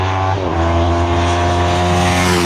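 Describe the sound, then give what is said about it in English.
A loud Ducati Hypermotard 821 motorcycle engine revving high, its buzzing tone dipping briefly near the start before climbing back and holding a strong, steady drone, with no voices. “No, is the Hyper Motard 821.”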